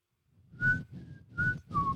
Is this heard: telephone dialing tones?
no